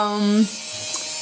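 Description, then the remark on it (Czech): A power drill whirs with a steady, buzzing motor hum for under half a second, then cuts off abruptly, leaving only a low background hiss. “Teď na to někdo vrtá, to je v pořádku.”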